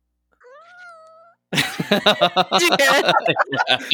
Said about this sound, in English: The cat's meow.